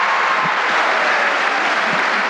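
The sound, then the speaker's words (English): The studio audience of the Phil Donahue talk show, filming in a huge auditorium in Youngstown, Ohio, applauds in a loud, dense wash of clapping that stays steady and even for the whole stretch. No one speaks over it. “In the video of this event, you can see that everyone is all smiles and cheering, like they're at a rock concert.”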